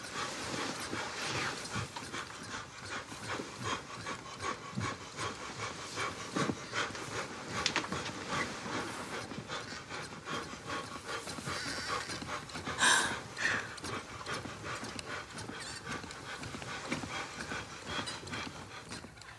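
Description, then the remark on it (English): Rapid, heavy panting repeats in a steady breathless rhythm for the whole stretch, fairly loud, with one sharper burst partway through and no talking, made by a person doing push-ups very fast. “and going, ha, ha, ha, in a way that no one who does push-ups ever does.”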